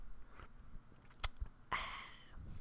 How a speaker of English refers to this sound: Let's go ahead and have a sip.